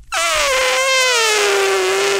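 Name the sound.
voice imitating an elephant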